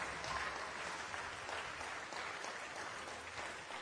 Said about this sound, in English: Go ahead and clap. This is the best time to be able to clap. It's the best time.